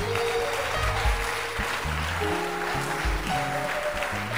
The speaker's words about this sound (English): Clap your hands.